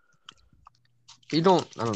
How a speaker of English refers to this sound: …'s munching on something.